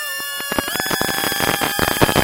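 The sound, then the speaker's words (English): A quadcopter drone whizzes past at high speed, its motors giving a loud, continuous high-pitched whine with steady tones, broken by rapid bursts of rushing, buzzing noise. “You guys can listen to the sound of this beautiful quadcopter.”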